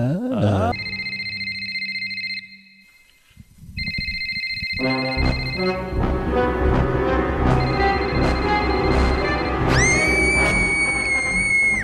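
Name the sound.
scream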